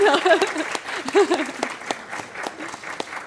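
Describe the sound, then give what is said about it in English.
A small audience claps together in a brisk, scattered burst of applause for volunteers standing up, with sharp individual claps and voices chattering over the first half before the clapping carries on alone. “We can give you a round of applause.”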